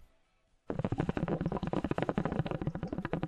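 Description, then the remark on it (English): Loud, continuous gurgling of a hookah water pipe on a Friday night in Los Angeles, rapid bubbling pulses starting abruptly after a brief near-silent pause and churning steadily to the end, with no voices. “You're a little busy over there. It's Hookah Friday.”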